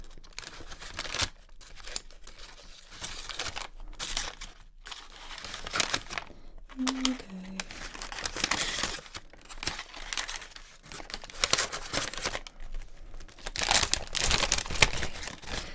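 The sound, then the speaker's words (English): Plastic bag crinkling and rustling in irregular bursts as sweets are dropped in, with a brief pair of low tonal blips midway and louder crackling toward the end. “Okay, what I'd suggest with these is that I just sort of tease them out a bit, like so. And into the bag without getting them on the floor.”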